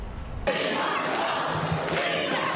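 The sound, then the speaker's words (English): A large crowd at a packed public forum at the South Shore International College Prep High School erupts into loud, overlapping shouting after a brief moment of lower noise, many voices yelling at once, strongly opposing housing migrants in their community, in a sustained, agitated roar that stays dense throughout. “A packed house at the South Shore International College Prep High School. The crowd voicing their opinion, strongly opposing the addition of migrants in their community.”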